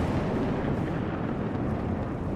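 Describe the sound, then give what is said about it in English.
A loud, deep rumble of thunder rolls on steadily for a couple of seconds, heavy in the low end with a rough, roaring texture and no voices. “And then there's a thunderclap, and then the sound of rain very heavily falling.”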